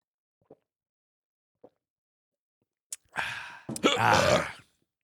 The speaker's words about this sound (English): Did a little hiccup burp there at the end. Those are the worst, man.